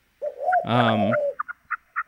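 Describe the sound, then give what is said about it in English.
A turtle dove coos: a smooth rising hum swells into a rich, throaty coo, then four short chirpy notes follow in quick succession. No one talks over it. “Here's your turtle dove.”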